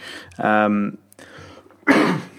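A voiced throat-clearing rasp is followed after a short pause by a sharp, breathy cough burst, both fairly loud with no talking.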